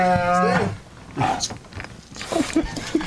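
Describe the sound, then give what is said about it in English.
A riled-up bear in a studio lets out a loud, drawn-out, droning growl, then follows with several shorter, rougher grunting growls in uneven bursts. “Get him going. Get him riled up.”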